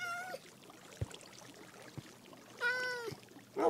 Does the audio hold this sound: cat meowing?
yes